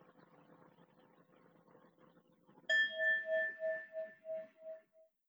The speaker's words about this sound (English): So I'm going to open with the singing bell, and then I'll close with the singing bell so that you have a sense of a start and a finish to this.